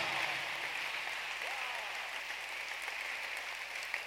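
Steady audience applause, a dense, even wash of many hands clapping that holds at a constant level for the whole stretch, with a faint voice or cheer briefly rising through it.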